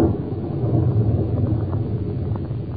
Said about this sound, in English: Good heavens, that lightning must have hit quite near here.